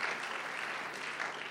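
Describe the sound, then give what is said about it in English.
A crowd applauds the great-grandmothers at a Mother's Day gathering, a dense wash of many hands clapping at once with no clear individual beats, sustained at an even level throughout. “Give them a clap, eh?”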